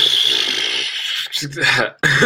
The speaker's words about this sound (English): Yeah, well, again, he's giving you a coughing fit.